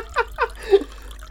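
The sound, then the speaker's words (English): Water pours close to the microphone in a brief run of three bubbly glugs, each rising slightly in pitch, followed by a soft trickle that fades out. “I'll let Jacob do his water. It's all right, he's put the mic next to it.”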